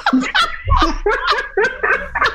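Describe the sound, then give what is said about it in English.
A person imitates a dog with a quick series of about six rough, throaty barks, fairly loud, delivered in an uneven rhythm with no other talking. “As a dog barking sounds like that.”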